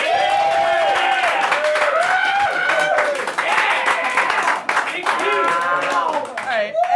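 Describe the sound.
An audience claps steadily and loudly for about seven seconds, with many voices cheering and calling out over the applause the whole time, as the crowd votes by applause for its favorite mutant turtle character.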